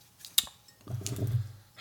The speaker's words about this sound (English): We're going to be adding our simple syrup. I'm going to pop one of these pour spouts in here.